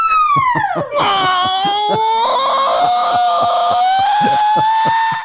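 A loud, drawn-out scream sound effect that swoops down in pitch and then holds a long wavering wail, set over a steady, punchy musical beat in a short mailbag segment jingle.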